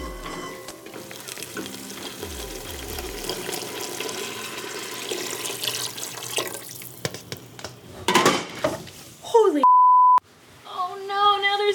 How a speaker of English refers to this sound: I just spilled chicken stock all over my kitchen floor in an attempt to make gumbo, one of the 333 recipes in Lena Richard's 1939 cookbook.